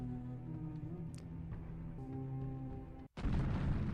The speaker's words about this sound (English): Massive, huge footsteps. Looking behind you, so you see something shadowy. It's humanoid, but it's 30, 40 feet tall, and you actually feel the life draining out of you.